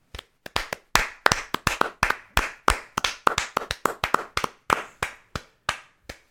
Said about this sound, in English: I think opening weekend, those numbers, you know what the Croods deserve? Applause.